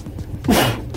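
A man sneezes once, a sudden, loud burst that cuts through a low background hum and then trails off quickly.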